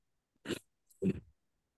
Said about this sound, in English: Sorry for the cough.